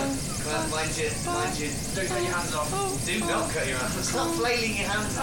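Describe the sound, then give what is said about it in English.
A voice imitates an approaching helicopter with a steady, buzzy vocal drone whose pitch wavers and pulses, holding at a fairly constant loudness for the whole five seconds. “Here's the helicopter coming now.”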